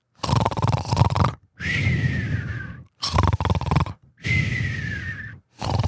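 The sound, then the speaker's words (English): A person imitates loud snoring with their voice, alternating rough, rattling inhales and hissing exhales in a steady rhythm, four big snores with short pauses between. “You'd be like, "Jesus would have not snored, because if Jesus snored, that would have implied that he had sinus blockage.”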